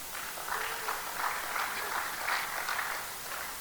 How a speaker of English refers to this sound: Well, you clapping, man. We ain't got there yet. Now you can clap.